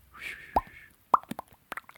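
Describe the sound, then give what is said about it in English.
A voice imitates water dripping with a series of wet, hollow mouth plops, a few loud pops followed by quicker, lighter ones, irregularly spaced and alone with no talking. “Can you make a water noise?”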